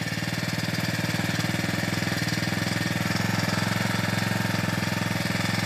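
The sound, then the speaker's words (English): A petrol lawn mower with a 4-stroke engine idles steadily after being started to cut the grass, a loud, continuous rapid chugging with a rattling mechanical edge that holds even throughout, with no voices. “The engine has turned over.”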